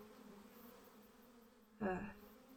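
A bee buzzes steadily at low volume with a droning hum, then swells into a brief, louder burst of buzzing near the end before fading back down.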